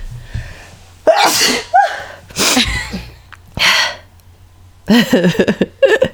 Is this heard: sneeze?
yes